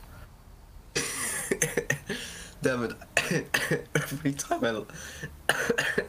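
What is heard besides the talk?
repeated coughing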